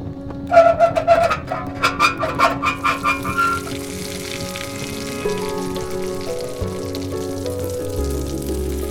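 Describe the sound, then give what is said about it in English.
Boiling molten lead glugs down a pipeline into a tank with a radium lining in a quick run of rhythmic, bubbling pulses, then settles into a steady sizzling hum with a low rumble beneath. Nobody speaks. “Lead pours down the pipeline, gets irrigated into tank with radium lining.”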